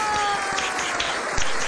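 A studio audience applauds steadily, a dense wash of many hands clapping at a fairly loud, even level with a few sharper claps standing out, and a faint voice underneath.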